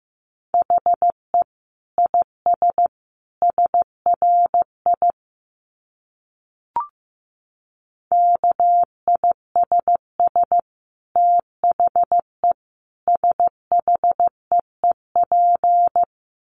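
Morse code beeps at about 15 words per minute: a steady mid-pitched tone keyed into short and long pulses in clustered groups, pausing briefly midway around a single soft click, with no voices.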